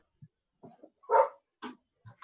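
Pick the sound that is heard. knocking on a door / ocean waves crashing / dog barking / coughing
dog barking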